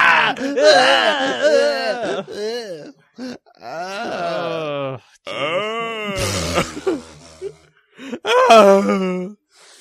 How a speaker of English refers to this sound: Yeah, Buffalo Bill screaming.